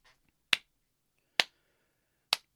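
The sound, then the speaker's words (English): Three slow, evenly spaced soft claps, a polite golf clap for a pro skater, each a crisp isolated smack with quiet pauses between and no talking. “You get my golf claps for the day, but check him out.”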